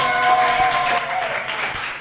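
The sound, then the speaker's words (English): A live studio audience at Lean Rocket Lab for the morning show Live at the Lab cheers and claps together, a dense wash of applause with a few high whoops and whistle-like tones riding on top, steady and loud for about two seconds. “Can I get a cheer from everyone?”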